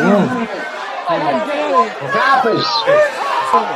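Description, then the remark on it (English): A loud, panicked crowd commotion during a police raid at the Red Horn club: many voices shouting and talking over one another at once, a dense, continuous hubbub with no single voice standing out. “Police scrambled into the crowd.”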